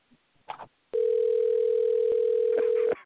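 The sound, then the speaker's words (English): A phone's outgoing ringing tone: one steady, loud electronic burst holding for about two seconds, preceded by a few brief, faint voice sounds. “Well, it's just ringing out.”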